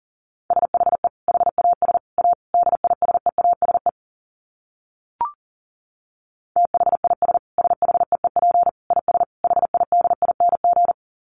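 Fast Morse code at about 40 words per minute: a steady mid-pitched tone keyed in rapid dits and dahs, broken by a pause with a single short click before the sending resumes.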